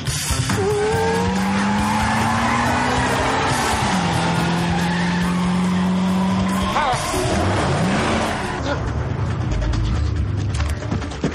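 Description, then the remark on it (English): A loud car chase with tires squealing and skidding in long wavering screeches over roaring engines, the noise continuous and intense throughout. “And then we have a funny little car chase here in the Nerd Herd Mobile.”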